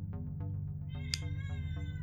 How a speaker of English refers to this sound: Oh, you're very loud. There is a kitty cat here. Oh, and she wants attention.